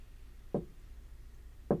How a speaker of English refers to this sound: I heard 3 knocks.